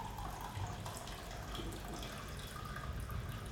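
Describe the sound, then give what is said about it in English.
Coffee pours from an Eva Solo brewer in a steady, continuous stream, an even splashing trickle that lasts the whole stretch with no one talking. “So pouring my Eva Solo.”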